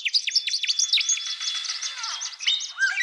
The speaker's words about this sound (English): This album consists entirely of Australian bird songs.